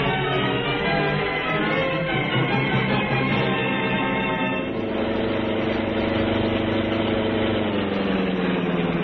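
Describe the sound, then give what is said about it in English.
A car engine runs steadily as the car arrives at a farmhouse, a low rumbling drone whose pitch shifts midway as the vehicle slows and settles into an idle, with no voices over it. “As we figured, Murdoch led us right here to the farmhouse where Bennett is kept. Yeah, there's Murdoch's car up ahead.”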